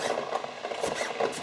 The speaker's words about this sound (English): I'm just finely chopping these scallions, green onions or spring onions. Call them what you will.